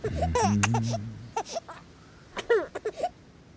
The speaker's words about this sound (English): He takes the baby and paces back and forth, bouncing her. He starts to sing, and slowly the baby's cries subside.